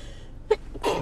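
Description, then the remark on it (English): A single sneeze, a short sharp intake followed by an explosive, breathy burst, moderately loud against a quiet background with no talking. “Bless you.”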